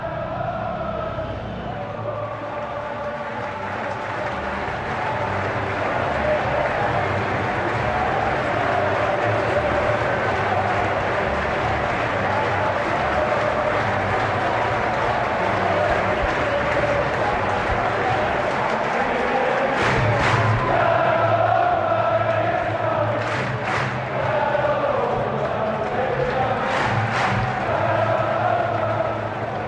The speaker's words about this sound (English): Quarter past six here on the last Sunday of the Premier League season, and I'm overlooking both a crowd of Crystal Palace fans leaving Selhurst Park after the team has beaten United 1-0 and the stadium.